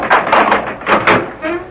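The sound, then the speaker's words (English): A church door opens during Sunday morning Mass with a few soft knocks and rustles, then a brief low creak of the hinge as it swings. “Open the door for whoever it is, please.”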